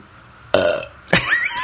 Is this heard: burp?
yes